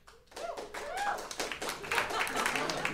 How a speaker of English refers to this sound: Golf claps. You got a few.